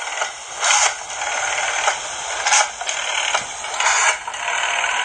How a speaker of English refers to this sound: It took me all of 5 seconds to find a YouTube video of someone dialing on a rotary phone. Didn't sound as good as I was hoping it was going to, though.